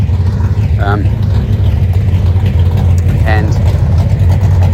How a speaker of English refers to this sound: So I'm just about to walk past somebody that looks like they've got a motorbike or something going in a shed here. Oh no, it's a car.